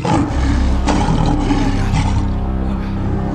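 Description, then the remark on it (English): A lion roars loudly, a deep rumbling growl that fills the whole clip for about three seconds, with no one speaking. “Is that... a lion?”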